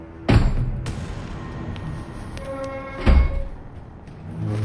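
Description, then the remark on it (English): A heavy chest of drawers is shoved across a floor away from a door: a solid thump, a few seconds of low grinding scrape, then another heavy bump, with no talking. “I pushed the chest of drawers away from the door.”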